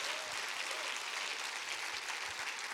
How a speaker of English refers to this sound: Clap your hands real big and receive that.